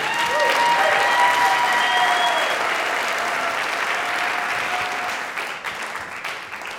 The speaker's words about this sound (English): Those were our six incredible speakers. Please give a big round of applause again